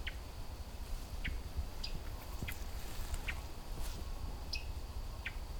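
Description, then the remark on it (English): A hermit thrush gives short, sharp chuck notes, about eight of them at irregular intervals, fairly faint against a steady outdoor background hiss. No one speaks. “I've got a hermit thrush in front of me here.”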